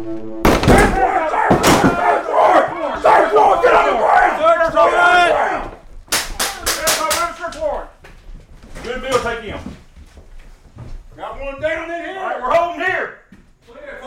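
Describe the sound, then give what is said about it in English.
A loud crash at the start, then several sharp bangs in a burst around the middle, with men shouting loudly throughout in overlapping, urgent yells: a Monroe County SWAT team breaking down the door of a vacant house during a drill. “An enormous crash pierced the silence. There was some yelling, but from the inside, I couldn't understand what they were saying.”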